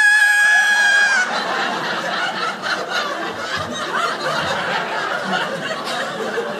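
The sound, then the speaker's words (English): A voice lets out a piercing, high-pitched screech for about a second, imitating a shrill noise, then breaks into breathy snickering and laughter that carries on to the end. “But we have a theory that he might be able to hear high register screeching noises like.”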